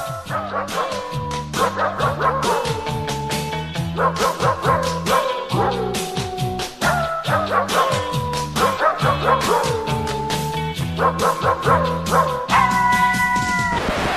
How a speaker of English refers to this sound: It's dogs barking … songs. Yeah. But synthesized dogs. This might wind up being the worst music selection for a podcast episode yet. It's that bad.